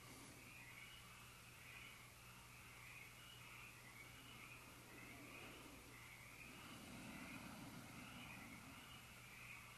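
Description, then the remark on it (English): A chorus of frogs croaks steadily outdoors, their pulsing calls repeating in a continuous rhythm over a low, constant background rumble, with no one speaking. “All the frogs and all beings cheer you on.”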